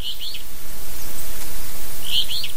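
Boreal forest birds in the Northwest Territories sing in two short bursts of high, bright chirps, one at the start and one near the end, over a steady wash of outdoor hiss. No one speaks.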